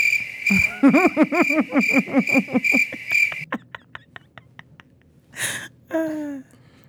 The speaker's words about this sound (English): Crickets.